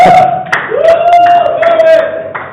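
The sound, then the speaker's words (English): An audience claps in scattered, uneven bursts beneath a steady sustained tone and voices, the applause loud and continuous for a couple of seconds. “No, clap for me.”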